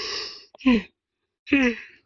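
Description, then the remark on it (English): A long breathy inhale opens into a drawn-out, groaning yawn, followed after a short pause by a second voiced yawning exhale that slides downward in pitch. Moderately loud. “Sorry. Yawned.”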